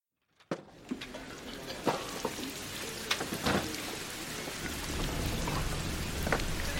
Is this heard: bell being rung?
no